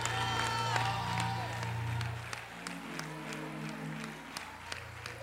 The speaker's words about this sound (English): If you think that's you, you ought to give God an appreciation applause.